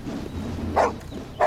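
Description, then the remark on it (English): Two sharp dog barks, spaced about half a second apart, over a low, steady background hum. “There's a sound effect trope. Dogs barking off screen.”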